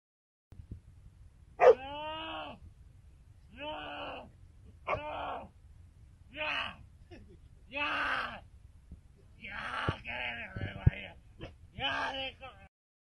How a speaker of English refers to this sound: As this guy screams, the dog appears to be happy, playful, and having a good time.